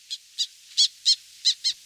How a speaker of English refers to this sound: Abandoned woodpecker nest holes become nests or roosts for small owls, like this northern saw-whet owl, or cavity-nesting wood ducks.